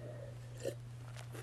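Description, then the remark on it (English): A quiet sip from a drink: one soft gulping swallow, then faint wet mouth sounds, all over a steady low electrical hum with no talking. “Excuse my sip of a drink.”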